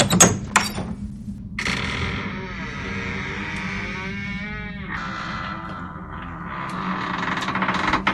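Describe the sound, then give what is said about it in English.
An ancient door creaks slowly open in one long, groaning, wavering squeal lasting several seconds, preceded by a couple of sharp knocks or clunks, with a low rumbling hum underneath throughout. “And into the ancient door we go.”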